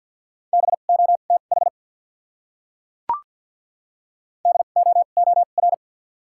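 Rapid Morse code at 50 wpm with double character spacing, sending common English words: a steady mid-pitched tone keyed in quick short groups, two bursts of characters separated by a silent gap broken only by a single sharp click.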